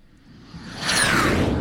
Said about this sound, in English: Oh, I'd say that's a plane, Mike. You'd be correct.